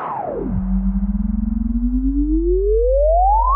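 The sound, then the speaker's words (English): Two pure test tones of 40 and 184 hertz play together in a sideband effect test, with no voices: a deep steady low tone beneath a higher tone that slides down, holds with a faint pulsing beat, then sweeps smoothly upward. “sideband effect. 40 and 184.”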